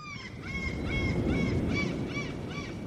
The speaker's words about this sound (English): As you can hear, I'm at the ocean's edge on a beach.